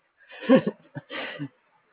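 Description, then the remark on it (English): A short horse neigh in two close bursts, a quick rising whinny followed by a longer breathy snort-like call, moderately loud, with silence around it. “These horses, they're my life,”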